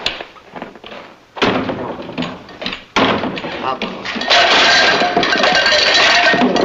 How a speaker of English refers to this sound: Just stand. I'll close the door.